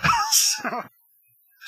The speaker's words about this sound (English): All right, so, pro broadcasting tip, clear your throat directly into the microphone. That's what they all do. At least that's what they do on WTOP.